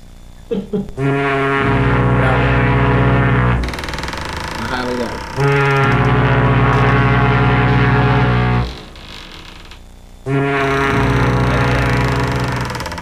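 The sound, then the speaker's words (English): A ship's horn blasts loudly aboard a boat on the water in long, sustained deep tones, three blows in a row with short gaps between them, with brief bits of talking in the pauses. “Horns.”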